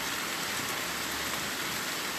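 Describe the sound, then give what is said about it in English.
Steady rain pours down in a dense, even hiss, drops pattering on surfaces, unbroken for the whole moment with no voices. “like a rainforest. Our rain comes to only nourish.”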